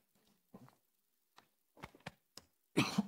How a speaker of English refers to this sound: I'm going to cough. Okay. As I choke on my water.